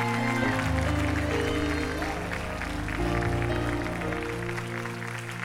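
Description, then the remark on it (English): A large crowd stands and applauds and cheers steadily for the United States of America, a dense wash of clapping that holds at a loud, even level throughout, with sustained musical chords playing underneath. “If you love your nation, would you stand to your feet and give a good round of applause for the United States of America?”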